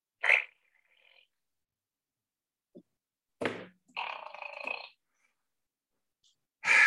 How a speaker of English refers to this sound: Every home needs a fart ninja.